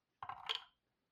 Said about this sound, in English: And next, ooh, we have the subject, which is roll two and combine them. So I'm going to roll some dice again.